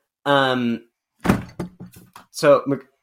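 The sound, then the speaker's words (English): A person falls with a dull, heavy thud, preceded by a drawn-out vocal cry and followed by a few short, strained voice sounds. “I just heard like a thud. Are you okay? I kind of fell.”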